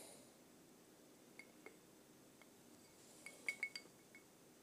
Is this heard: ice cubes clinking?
yes